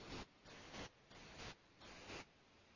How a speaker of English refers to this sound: Sorry about that. Like I said, a bunch of static in there, and it's everything got real quiet.